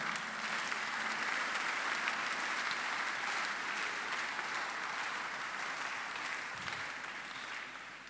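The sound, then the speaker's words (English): An audience claps steadily, a dense wash of many hands sustained for the whole stretch with no voices, easing slightly toward the end. “If you are not clapping, stop.”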